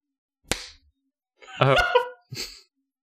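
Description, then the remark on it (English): One sharp, crisp hand clap rings out with a short decay, followed after a pause by a brief voiced exclamation and a quick breathy burst. “you have 4 claps. One more.”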